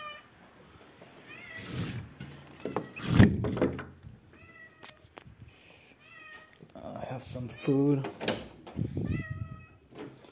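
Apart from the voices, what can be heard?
cat meowing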